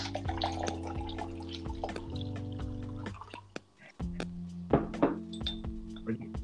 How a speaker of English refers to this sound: Pouring yourself a big old glass of goodness.